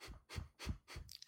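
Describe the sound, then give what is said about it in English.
Four quick, breathy sniffs in an even rhythm, each a short airy inhale through the nose as part of a breathing exercise with circular movements, with a soft low rumble beneath, repeated about three times a second with no talking. “Little sniffing. What does that sound like on the microphone?”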